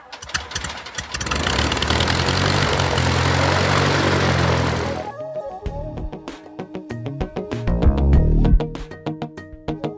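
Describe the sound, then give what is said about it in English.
A loud propeller-plane engine roars for about five seconds, then cuts to a rougher, sputtering idle with intermittent bursts and clanks. “A little bit of background noise throughout the day, but it's just airplanes, so it's not really noise.”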